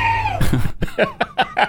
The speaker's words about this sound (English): A little scream at the end there would be nice, helpful, kind of finish it off.